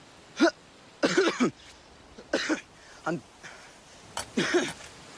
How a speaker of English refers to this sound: Her latest coughing fit really raised some concerns.